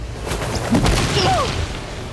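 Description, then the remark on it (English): A speeding ball of cloud carrying Sun Wukong crashes into a cliff with a heavy booming impact and a deep, sustained rumble, sharp cracks near the start, and brief whistling, whooshing tones sweeping through as the roar stays loud throughout. “He gritted his teeth, bracing himself for when the ball of cloud struck a cliff.”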